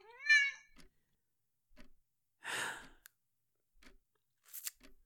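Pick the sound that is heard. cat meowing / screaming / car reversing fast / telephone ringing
cat meowing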